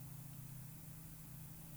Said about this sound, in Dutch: Hoor je een snelweg op de achtergrond? Wat voor een invloed heeft dit op je gemoedstoestand? En op je gezondheid?